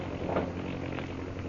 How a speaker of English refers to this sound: Shanghai Lil's airplane. She's come back.